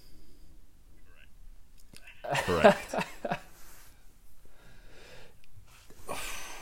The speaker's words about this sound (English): Wow, I've actually stumped you two. You're both like, you're just gasping in the background here.